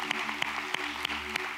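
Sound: audience applauding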